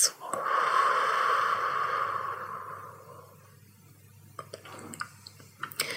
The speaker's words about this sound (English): Breathing out on six.